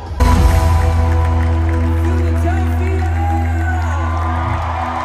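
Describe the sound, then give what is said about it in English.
A concert crowd in Philadelphia cheers before a headline show in a dense, continuous roar that stays loud throughout, with a steady low droning hum running beneath the noise. “Already the best crowd of the entire tour, I can already tell.”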